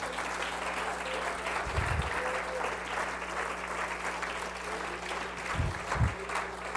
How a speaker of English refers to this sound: Come on, clap your hands unto the Lord tonight.